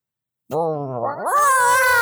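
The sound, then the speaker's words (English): A person voices a single drawn-out, rising meow imitation, starting low and sliding up into a higher, strained cat-like wail, loud with no other talk. “You sound like a kitty cat.”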